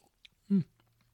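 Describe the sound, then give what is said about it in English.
A brief wet swish and gurgle as a tiny sip of wine is moved around the mouth to prime the palate before tasting, one short loud burst with quiet moments on either side. “Take a tiny sip, just a tiny sip. Put it around your mouth.”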